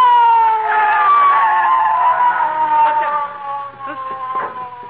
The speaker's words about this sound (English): I hear a siren. Oh, so do I. It's the police, McGee. It's the police.